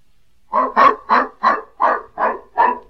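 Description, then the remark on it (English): A dog barks rapidly, about seven sharp yaps in a quick, even rhythm, fairly loud, with no voices around it, as it runs off after a cat down a block and around the corner. “The old gent let him try to trot along to the drugstore, but suddenly a cat came along, and off went the dog down a block and around the corner.”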